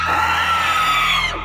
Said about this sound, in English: One of my captors let a shrill screech out into the dark night air.